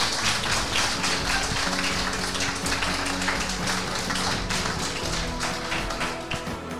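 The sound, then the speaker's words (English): An audience applauds: dense, continuous clapping that stays loud and steady for several seconds, easing off just slightly toward the end, with no voices over it. “I think we need to give her another round of applause.”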